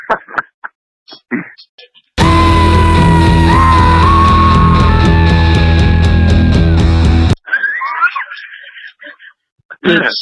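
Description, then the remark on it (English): A loud, strained singing scream holds and wavers over dense, full-band rock backing for about five seconds, with a person talking briefly before and after. “I want to scream like a siren. So I'm just going to play what actually ended up happening.”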